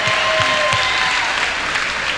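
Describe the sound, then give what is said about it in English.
A crowd breaks into steady, dense applause, the clapping loud and continuous for a couple of seconds with a faint murmur of voices mixed in. “Give them a round of applause for being brave enough to come out, yes.”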